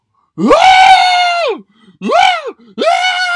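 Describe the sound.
A man voices three loud, high-pitched screams in quick succession: one long wail, then two shorter yelps, each rising and falling with a strained, startled quality, imitating his own fright when a dog off the leash came up behind him.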